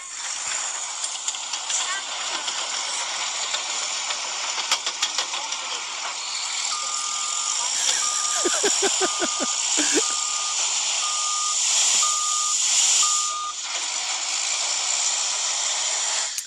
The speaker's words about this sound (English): That is large construction equipment. Oh my god. Replenishing the sand from Hurricane Matthew.